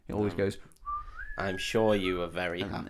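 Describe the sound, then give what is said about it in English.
A person whistles a short rising electronic chirp, imitating the comms button on the bridge in the original Star Trek: a steady mid-pitched tone that slides upward and holds briefly, with speech before and after it. “And this was real creamy shorts time for fans of the original Star Trek because that's the noise of the comms on the bridge when they press the little comms button.”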